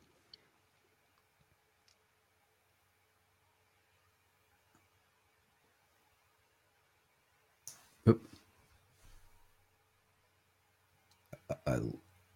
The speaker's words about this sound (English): I lost your audio. Oh, can you hear me now? Yes, sorry about that.